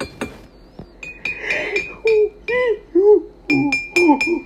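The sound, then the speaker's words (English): A spoon clinks repeatedly against a glass of fruity tea, sharp taps with a bright ringing tone lingering between strikes, while people talk quietly alongside. “Do you need the spoon? Yeah, I'll need the spoon.”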